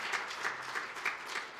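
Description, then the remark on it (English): A crowd applauds for Jesus, steady dense overlapping claps forming a continuous wash of sound with slight rhythmic swells, fairly quiet overall and with no voices. “Can we give Jesus the applause He deserves?”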